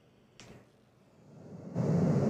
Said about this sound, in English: Okay, now let's hear pink. Because white noise freaks me the fuck out. This is pink noise.